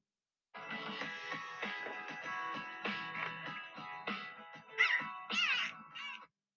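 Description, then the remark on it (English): Dolphins squeal and whistle in a steady stream of high, chirpy calls, rising and falling in pitch, with a few louder, sharper squeals near the end. No one speaks. “That's who providing the sounds of the dolphins.”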